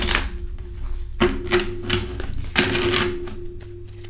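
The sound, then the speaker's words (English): A deck of tarot cards being shuffled: several crisp, papery riffling bursts of varying length come in uneven succession over a steady low hum, with no talking. “You get to listen to me shuffle throughout the entire process.”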